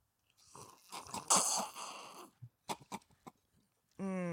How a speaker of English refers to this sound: It is a daiquiri. Ooh. All right, slurp.